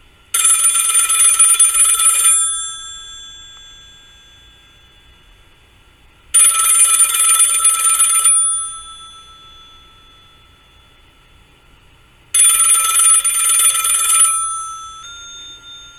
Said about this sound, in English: The phone never stops ringing. We're tired of it. It's just like we're sick of sports. The phone rings again.